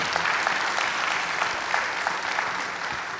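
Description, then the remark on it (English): An audience applauds a panel of speakers steadily, a dense wash of many hands clapping at an even, sustained level for a few seconds with no voices standing out. “Can we give our panelists just a round of applause here?”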